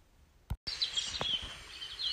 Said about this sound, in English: Listen to the birds. They're tweeting.